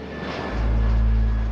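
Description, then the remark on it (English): A deep, steady airplane engine rumble swells in after a brief quiet moment and holds at a loud, droning level with a faint whine above it. No one speaks. “He kissed his mother and five siblings goodbye, and he got on a plane.”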